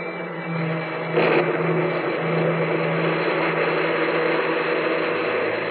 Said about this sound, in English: Heavy car lurched and hurtled over the rain-soaked roads, tearing wildly through the dark and careening up the hillside toward the stark walls of the sanitarium. It skidded to a standstill in front of the main entrance